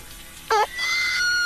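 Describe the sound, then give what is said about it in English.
A chicken's distress call: a short, loud, wavering squawk, then a sustained, shrill, high-pitched cry that holds steady for about half a second. No one speaks. “Anyway, and this is the sound that they make when they are in distress, the one that we just heard now.”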